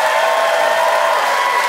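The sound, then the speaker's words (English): A Neptune Theater audience applauds steadily to vote for John Steinberg, a dense wash of clapping that holds at an even, fairly loud level throughout, with no one speaking over it. “By applause, who liked his anti-lighthouse language and thought that John was the keeper, John Steinberg?”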